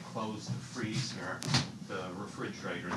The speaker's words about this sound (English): Freezer door open.